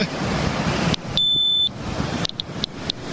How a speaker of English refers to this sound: The Geiger counter on the beach. Here I am. I'm over background. The alarm's going off. Here I am on the beach.